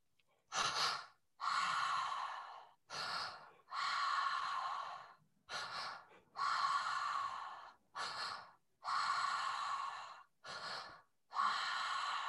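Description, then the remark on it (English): Heavy, rhythmic mouth breathing in a pattern of two breaths in and one out through the mouth repeats about five times: a short sharp inhale followed by a longer, airy breath, each cycle separated by brief pauses. Loud, with no talking. “Two breaths in through the mouth, one breath out through the mouth.”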